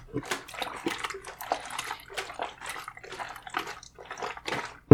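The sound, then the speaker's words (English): Pyro developer sloshes back and forth inside a small film developing tank in a steady, repeated rhythm as it is agitated for 15 seconds, a step repeated every 30 seconds, ending with a sharp knock. “Every 30 seconds, we agitate for 15 seconds. So I'm going to start that now.”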